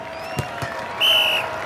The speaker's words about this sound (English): Imagine, you're sitting on a hot metal bench, the California sun beating onto your face. People all around you are cheering, but not for you.